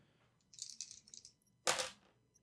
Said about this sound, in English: So you would roll actually two dice for this.